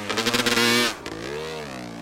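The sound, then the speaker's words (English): A two-stroke Yamaha off-road motorcycle engine revs hard with a buzzy, high-pitched roar, pitch climbing then dropping briefly before rising again in a second rev, loud with no voices, as the rider revs out of his garage onto remote trails in western Maricopa County. “nobody around to anger with the loud roar of his two-stroke Yamaha off-roader.”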